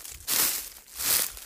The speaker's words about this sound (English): So I'm walking in now to my spot. A lot of oak leaves down here, if you can hear that crunching under my feet.